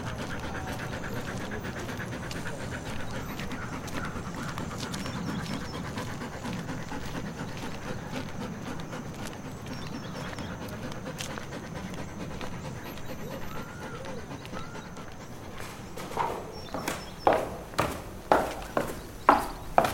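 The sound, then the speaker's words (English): Mr. Chuck, a tired small dog, pants rapidly and steadily throughout, and toward the end a quick run of sharp, evenly spaced paw taps joins in as his little paws struggle to keep a fast pace. “At this point, his little paws struggling to keep up a fast and consistent pace, too tired to trot.”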